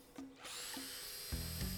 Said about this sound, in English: I also brought an electric chainsaw for firewood.